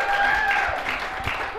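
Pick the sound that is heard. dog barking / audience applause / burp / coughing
audience applause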